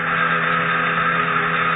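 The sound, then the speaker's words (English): A sound projector machine beams sound at a pile of bottles, running with a steady, unbroken electric hum, a bright buzzing drone that holds an even loudness throughout with no voices over it. “It's a sound projector, Miss Lane. Beams the sound to just the spot I want.”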